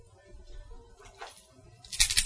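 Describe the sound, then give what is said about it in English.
Dice clatter onto a surface, a brief tumble followed by a brighter, louder rattle near the end, with a low background rumble throughout. “Oh my god, oh, dice, right.”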